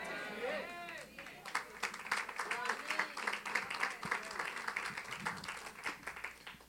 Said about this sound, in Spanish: El nivel de aplausos va bajando, eso está bien. Eso está bien.